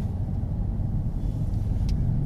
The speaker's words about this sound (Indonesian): Gue jarang main sih daerah Jakarta Barat sini, bro. Anjing macet banget sih, gila. Asli nih.